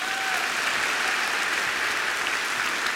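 A crowd claps steadily and loudly, a dense wash of many hands with no individual beats standing out, sustained evenly for about three seconds.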